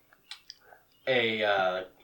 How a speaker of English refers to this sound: I'll be eating saltines, so if it sounds gross... we're doing also a combined podcast and mukbang today. Nope, no one wants that. Mouth chewing noises. The worst noises. Mm-hmm. Top five worst noises.